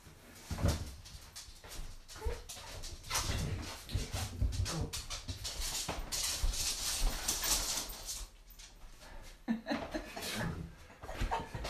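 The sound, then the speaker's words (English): A small female dog whimpers and whines in short, restless bursts, begging for food in the morning at breakfast time, mixed with shuffling and light clattering noises throughout. “Morning, little doggy. What are you doing? Hmm? On the scrounge.”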